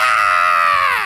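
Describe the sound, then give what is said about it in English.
A single loud, sustained human scream, high-pitched and shrill, holding steady before dipping slightly in pitch at the end, with no talking. “Do you want to run outside? Screaming or not screaming?”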